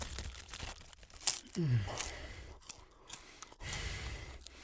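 Someone eating a massive packet of crisps: repeated crunchy bites and crinkling of the packet in irregular bursts, with a short low vocal murmur partway through.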